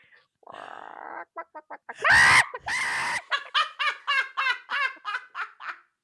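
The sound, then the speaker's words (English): A person's voice imitates a hen cackling after laying an egg: a drawn-out cluck, a few short clucks, a loud squawk, then a quick rhythmic run of about ten clucks, fairly loud. “Do a chicken after it lays its egg.”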